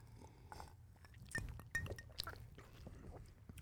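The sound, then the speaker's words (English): Ice clinks against a glass a few times as someone takes a quiet sip of a smoked old fashioned cocktail, with soft mouth sounds in between and no talking. “And I am having the smoked fashioned. So I'm going to take a little Here sip.”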